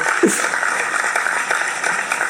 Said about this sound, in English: My birthday is in 10 days, by the way. Yes, a round of applause for me. Thank you.